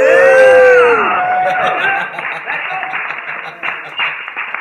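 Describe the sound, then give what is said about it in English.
A crowd cheers and whoops loudly at first, then settles into a steady wash of dense clapping that fades slightly over several seconds. “Give her a round of applause, people.”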